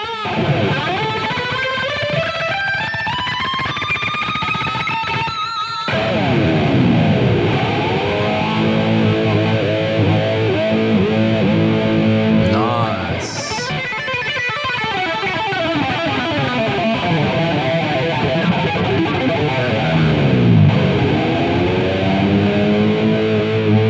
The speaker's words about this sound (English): All right, let's have a listen to a phaser here. I'll play a phaser back for you.